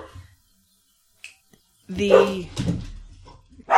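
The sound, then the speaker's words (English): A dog lets out a couple of loud barks in quick succession after a quiet stretch, with a soft knock or tap before them; the dog has finished his bone and is barking at another dog walking by the house. “Ranger's finished his bone and is now yelling. A dog walked by.”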